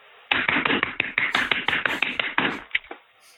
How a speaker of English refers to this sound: Slapping some meat. Slapping the meat, man. Everybody's slapping meat. It's sweeping the nation.